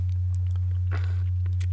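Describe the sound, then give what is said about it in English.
A single short sip of water, a soft slurping rush midway through, with faint mouth clicks around it and a steady low hum underneath. No one speaks. “His entire career, excuse me, needed a sip of water there.”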